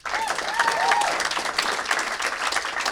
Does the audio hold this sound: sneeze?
no